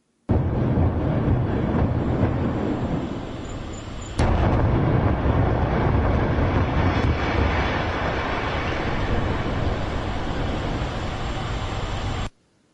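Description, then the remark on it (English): The late-Sunday demolition of the rest of the collapsed Champaign Towers condo: a loud, continuous roaring rumble as the building falls floor after floor into a cloud of dust, with a sharp explosive blast cracking through about a third of the way in, then the heavy noise carries on until it cuts off. “A loud rat-a-tat of explosions echoed from the structure. The building began to fall, one floor after another, cascading into a cloud of dust.”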